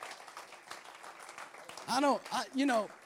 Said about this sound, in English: So lift your hands, and while they're up there, go ahead and do a clap unto the Lord. Come on, come on, come on.